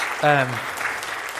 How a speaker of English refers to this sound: He is so good. Yeah, round of applause.